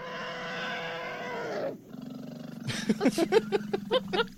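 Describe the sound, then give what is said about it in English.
An African bull elephant, in an original sound library recording, lets out a loud, brassy trumpet blast for over a second, then a deep low rumble with a run of rhythmic, pulsing calls, with no talking. “That's a real elephant. That's an African bull elephant.”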